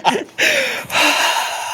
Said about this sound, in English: Stop breathing heavy on the purpose, bro, you fucker.